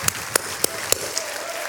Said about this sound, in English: Good morning, everybody. Come on, clap real big. Yes, sir. Woo.